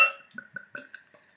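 Trouble Brewing's Big Bear Brown Ale being poured into a glass: a short clink at the start, then a steady run of rhythmic, hollow glugs with a ringing tone, moderately loud with no talking.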